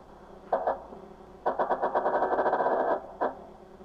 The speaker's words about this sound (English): So it's like creaking. Yeah. Yeah. It's a sub creaking from like the pressure and everything.